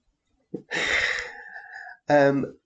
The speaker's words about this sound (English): oh dear, I'm going to have to stop due to coughing.